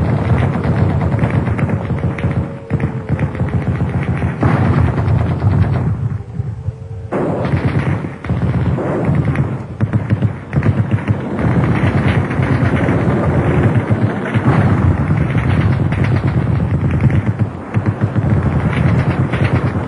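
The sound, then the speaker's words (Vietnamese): Dense, continuous gunfire and explosions rumble without pause, with heavy low booms and rapid bursts layered over a constant roar, loud throughout with no talking: bombs, guns and rockets during an air raid on Hanoi, amid thunder, lightning and falling rain. “Tiếng sấm, tiếng sét, tiếng bom, tiếng súng, tiếng tên lửa, tiếng mưa rơi, rú rít tức mù.”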